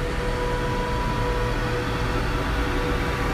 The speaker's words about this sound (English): Truck's struggling to get uphill, dude. I know. Struggling to get uphill. Why is it making a noise?